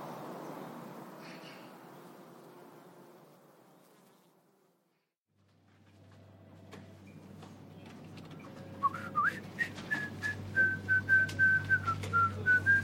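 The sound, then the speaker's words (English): A steady low buzzing hum gives way to a man whistling a bright, bouncy medley of sitcom themes in short lilting phrases, clear, as he walks past office cubicles, with no one talking. “whistled a lively medley of sitcom themes as he walked past his underlings in their cubicles and stepped into his luxurious office, fully a third of the single-story building's floor space, at the far end.”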